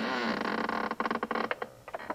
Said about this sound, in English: Creaky floor.